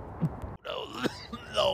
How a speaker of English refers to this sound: Clears out your throat. All the coughing.